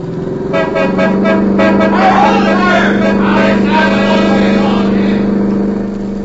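A car drives on through a place where cars are being stopped ahead, its engine droning steadily while a horn blares in sustained, overlapping tones for several seconds, with faint muffled voices underneath.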